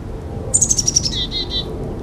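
A black-capped chickadee calls: a quick run of high, thin chirps followed by three lower, slightly buzzy notes, all over a soft low background rumble with no talking.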